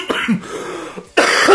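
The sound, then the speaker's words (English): A person coughs twice, a short rough cough followed after a brief pause by a louder, harsher one, with no talking. “One of my thoughts there is going to be a few of those coughs.”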